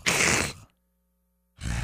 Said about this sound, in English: And you get that, the cat hissing over there.